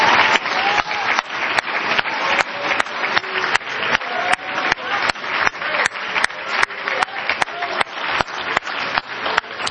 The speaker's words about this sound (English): Give this good church a hand clap. Would you do that?